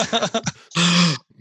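A voice mimics coughing: several quick rough throaty bursts, then one longer, drawn-out hacking sound, loud and alone, ending abruptly.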